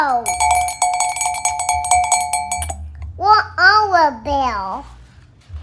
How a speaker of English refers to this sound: Bell. Where's the other bell? Yeah. The other bell's in the other room.